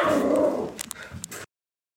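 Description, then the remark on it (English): A dog barks once with a drawn-out, growly sound, followed by a few quick, sharp yips or snaps, with no talking. “he said, you can cut the dog barking out at the end, but we're going to leave it in there just to give you a little laugh there at the end of it.”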